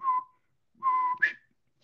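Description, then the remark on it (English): A person whistles a short quail-like call: a brief steady note, a pause, then a longer note ending in a quick upward-sliding chirp, clear with no talking. “So the quail whistle goes.”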